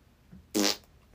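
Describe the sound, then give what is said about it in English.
A single buzzy, blaring fart noise made with the mouth lasts about a quarter second and stands out loud against near silence, followed by the start of another brief sound at the very end. “Yeah, I'll do the fart.”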